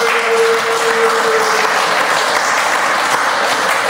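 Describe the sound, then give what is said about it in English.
A crowd claps and cheers loudly and steadily for about four seconds, a dense wash of applause with a sustained shout rising out of it near the start. “And let's make noise for the niggas that got wives and babies.”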